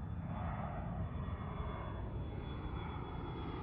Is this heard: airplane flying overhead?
yes